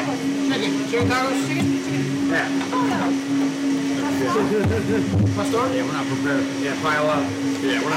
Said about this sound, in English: Wow. That's a loud ass blender.